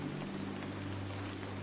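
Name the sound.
steady rain falling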